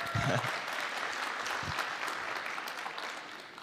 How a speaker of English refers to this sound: Let's give them a round of applause, man.